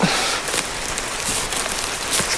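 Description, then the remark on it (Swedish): Steady rain pours down in a dense, continuous hiss, with scattered sharper drops pattering. It stays evenly loud throughout, and no one speaks. “Nu får vi stå här i regnet istället.”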